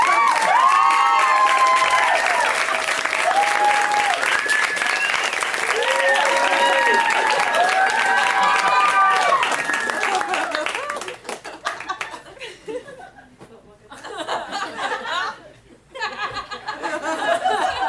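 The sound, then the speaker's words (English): A loud, dense round of audience applause at a stand-up comedy show, with whoops and cheers over it, holding steady for about eleven seconds before thinning into scattered claps and fading. “Okay, huge round of applause as you would for a man.”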